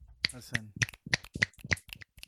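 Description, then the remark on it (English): Fingers snap in a steady beat, about eight crisp, sharp snaps spaced evenly, with a faint low voice murmuring underneath at the start. “Clap your fingers, y'all.”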